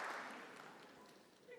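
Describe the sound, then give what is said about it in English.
A brief burst of scattered audience clapping during a sermon that fades away within a second or two, heard faintly. “So you don't have to clap.”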